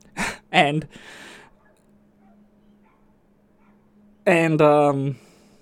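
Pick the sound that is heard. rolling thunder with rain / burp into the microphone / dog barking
dog barking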